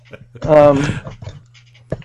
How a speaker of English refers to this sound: Everyone on the internet is probably hearing you gagging. It's kind of gross.